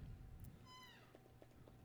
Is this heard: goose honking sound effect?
no